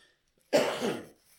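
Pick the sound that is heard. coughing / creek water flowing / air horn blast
coughing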